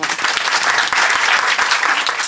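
A crowd breaks into loud, steady applause, a dense wash of many hands clapping at once that holds at an even level throughout without any talking over it.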